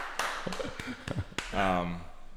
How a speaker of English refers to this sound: That's very awesome, impressive. We can clap. Thank you.